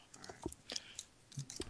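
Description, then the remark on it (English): Ten playing cards being laid out on a table after shuffling: a quick series of soft taps and flicks, irregularly spaced and fairly quiet, with no talking. “All right, I'm laying them out.”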